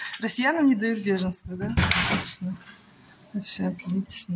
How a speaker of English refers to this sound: A woman just slams the door in her face.